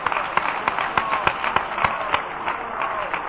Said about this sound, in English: Let's clap our hands just a minute to the Lord.